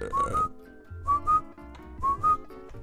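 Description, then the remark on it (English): A cricket chirping sound effect plays as three evenly spaced bursts, each a pair of short, shrill whistle-like notes, repeating in a steady rhythm with no talking over it. “This is where you put the cricket sound in. You got to get a cricket sound.”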